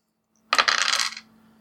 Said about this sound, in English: I am going to have you make a fight roll. Okay. We'll say plus your plus one for being an artist. Okay. So that is two dice.